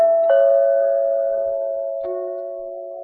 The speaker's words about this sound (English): Next stop is 6666 Park Avenue, the apartment of Mr. Clark Standish. You stick your finger on the doorbell.